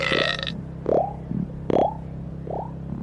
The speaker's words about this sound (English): Anyway, as they rose up to the edge of the atmosphere, Taylor burped out 5 bubbles.